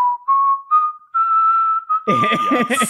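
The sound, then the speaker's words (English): Someone whistles the Curb Your Enthusiasm TV theme tune, a few clear sustained notes rising step by step. Near the end a loud, rough burst of laughter or commotion joins in under the final held note. “And you know, it was the first time round for Curb, and we would sit there whistling that.”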